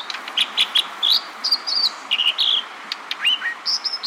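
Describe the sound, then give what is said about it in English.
An American dipper sings a lively, high-pitched song of short, repeated whistles and trills in quick bursts, ringing out over a steady wash of rapidly rushing western stream water. “This brilliant song, ringing out over a rapidly rushing western stream, belongs to an American dipper.”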